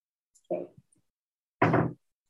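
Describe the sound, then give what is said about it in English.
A door is pushed shut: a short clatter and a scrape, then a louder, fuller thud as it closes, with quiet moments before and after. “Please close the door.”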